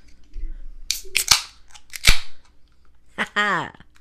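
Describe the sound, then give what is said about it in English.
Cans cracking open: three or four sharp, loud snaps, each trailed by a short hiss of fizz, followed by a brief falling vocal sound at the end. “Let's fucking crack these motherfuckers.”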